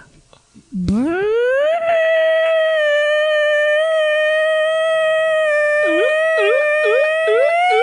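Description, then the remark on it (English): A person vocally imitates the sound of their own morning fart as an elk-like call: a long, rising, bugle-like sustained high whistling tone that swoops upward and ends in a series of quick warbling dips. “It sounds kind of like an elk.”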